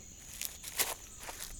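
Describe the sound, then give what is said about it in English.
A handful of light, soft stomping footsteps from the four tiny feet of a baby Triceratops, about four small padded thumps with a brushy rustle, spaced unevenly over a quiet hiss. No one speaks. “She had three little horns on her head and four tiny feet that made itty-bitty stumps.”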